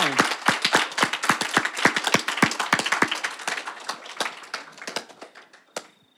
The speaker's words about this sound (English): And so thank you. So if you could have a round of applause. That's appropriate.